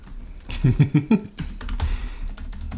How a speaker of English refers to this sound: Leaving in my keyboard sounds.